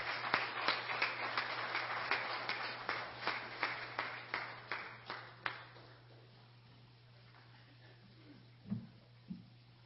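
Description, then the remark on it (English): A church audience claps hands for the Lord in a steady, even beat, about two claps per second, gradually fading out after several seconds and leaving near-silence over a low steady hum. “And brother, you come on, and then after she sings and give a testimony, let's give the Lord another hand clap while they're singing.”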